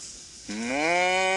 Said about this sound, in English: That's the mooing sound there.